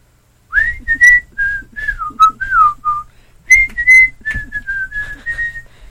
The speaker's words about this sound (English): Why don't you whistle something there? What? Yeah, whistle something for us,